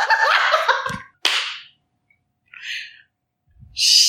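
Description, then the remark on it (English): A hand slaps against a chest over the heart once, a dull smack with a sharp onset, set among a few short bursts of hissy noise and breathy sounds. “I slapped my actual heart.”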